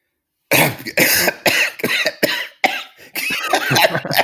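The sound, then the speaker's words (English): A loud fit of dry coughing: a rapid series of harsh, hacking coughs in quick succession, running together toward the end with no talking. “I've got a bit of a dry cough and a bit feverish, but I'm not doing too badly apart from that.”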